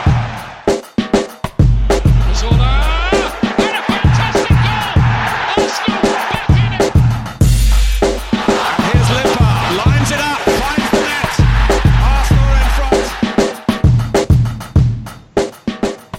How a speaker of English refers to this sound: Big victory at the Emirates over West Ham has the crowd chanting one Arsene Wenger and people wondering why on earth is the manager leaving now.